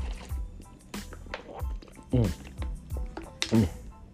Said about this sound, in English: Hold on, excuse me. I got to drink my water because I'm talking my shit to y'all.